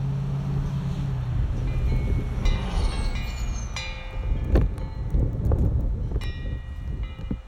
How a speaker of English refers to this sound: That is a big truck.